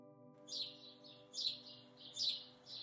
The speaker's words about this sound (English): Bird of the month, house sparrow. Incessant is the best way to describe the noise a group of sparrows makes. If you are lucky enough to have them in your garden or nesting in your eaves, you will know that they come as a gang